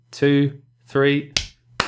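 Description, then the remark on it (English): Two sharp hand claps land about half a second apart, each a short crisp smack, following two brief voiced utterances. “We clap.”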